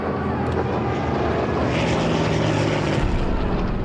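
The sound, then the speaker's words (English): Four German Focke-Wulf fighter planes roar in at low altitude over Patton's headquarters in a loud, steady engine drone with a rough, grinding texture and a faint high whine, holding at full strength throughout without a break. “In the midst of his heated exchange with them, Patton was interrupted by the whine of four German Focke-Wulf fighters roaring in at low altitude.”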